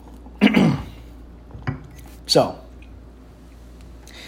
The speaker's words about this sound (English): Have a sip of coffee. Wash that down with a little bit of water. Got to stay hydrated.